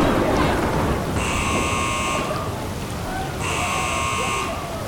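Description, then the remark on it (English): A spaceship hull breach: a steady roaring rush of air and noise, cut by two long, even buzzing alarm blasts with a pause between them. “Hull's breached on the other side of the door.”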